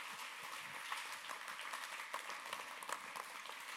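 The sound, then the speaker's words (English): A church audience claps their hands to Jesus in a dense, steady wash of applause, many overlapping claps forming a continuous crackling roar with no voices standing out. “Clap your hands to Jesus today.”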